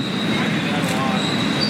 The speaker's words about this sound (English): It's kind of a noisy place because there's traffic, there's a railroad track nearby, and there's people.